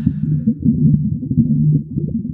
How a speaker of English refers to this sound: It's a microphone inside of boiling water. Captain, it is the sound of a recording underwater. You should keep that effect going, and we can just like riff over it for a minute.